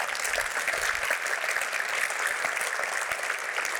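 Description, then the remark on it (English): A crowd applauds the sponsors at an event, a dense wash of many hands clapping at an even, sustained level for several seconds without pause or voices. “Thank you, sponsors. Round of applause.”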